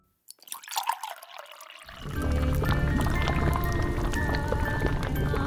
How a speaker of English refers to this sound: Yes, it is time for the ritual. Pour the virgin's blood.